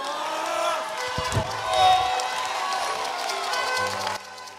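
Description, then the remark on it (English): An audience in an auditorium shouts and screams together in a dense, sustained roar of many raised voices, loud throughout with a brief swell in the middle before easing slightly at the end. “Those who are shouting, may the Lord give you double portion. Those who are screaming, may the Lord give you double portion.”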